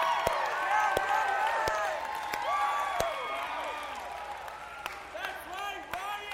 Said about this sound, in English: So if you are an adult leader that is serving with us in Reckless this year, I want you guys to look around and you can give them a round of applause.